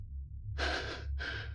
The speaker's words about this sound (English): I felt my heart quickening, my breaths coming in rapid gasps.